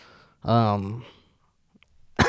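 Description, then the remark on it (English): A person coughs: a long, rough, voiced cough followed after a short pause by another sharp, harsh hack, with no speech. “as I cough up a fucking Jesus cripe.”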